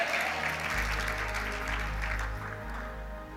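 Sustained crowd applause for the King of Kings, a dense steady wash of many hands clapping at full volume throughout, with a deep low hum running underneath and no voices rising above it.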